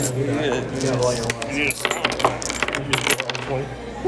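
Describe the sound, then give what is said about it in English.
Large dice clatter and tumble across a hard table in a quick burst of sharp clicks and rattles, with a low murmur of voices and room noise underneath. “Dice roll. Big dice.”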